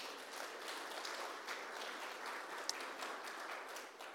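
A crowd applauds a volunteer coming up from the back, a dense wash of many hands clapping at once that holds at an even level throughout, moderately loud, with no voices over it.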